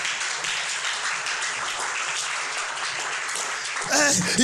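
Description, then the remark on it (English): An audience claps steadily, a dense, sustained wash of many hands that fills the space, and near the end a person's voice starts speaking over it. “If you're clapping, don't let those who are not clapping stop you from clapping excellently.”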